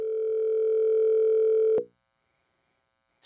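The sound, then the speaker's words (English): A steady, loud telephone dial tone hums for nearly two seconds before a listener call, then cuts off abruptly into silence, followed by a brief click or burst at the very end. “Yes, let's go to the phones.”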